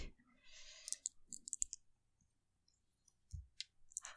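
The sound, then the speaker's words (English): A handful of 15 dice rattle and click together, a burst of sharp clicks early on, then scattered taps and a few more clacks near the end, fairly quiet with no talking. “I got the right amount. It's too many. 15. That's a lot of fucking dice.”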